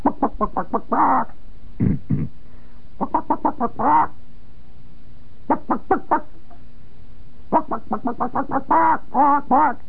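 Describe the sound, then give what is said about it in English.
A man's voice imitates a chicken, rapid bursts of clucks building into drawn-out squawks, repeated in several loud phrases with short pauses between them. “By the way, friends, that chicken that I'm doing there may sound simple to you.”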